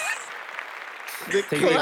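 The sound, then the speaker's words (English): A burst of recorded applause, a steady wash of clapping lasting about a second, before a voice starts speaking over its tail. “Let me put on my little clap, you know.”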